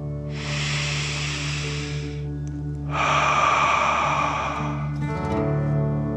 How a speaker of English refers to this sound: Now, let's take three more deep dragon breaths. Remember to breathe in through your nose, filling up your chest and belly, and then out, pretending you're breathing fire. Deep breath in and out.